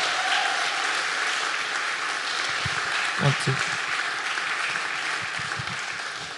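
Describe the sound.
A crowd applauds steadily, a dense wash of clapping that holds at an even, fairly loud level throughout, with a few brief voices or cheers poking through near the middle.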